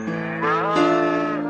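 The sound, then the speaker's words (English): A cow gives one long, loud moo that rises and shifts in pitch partway through before holding steady to the end, with no talking around it. “That's the wrong way, you stupid cow!”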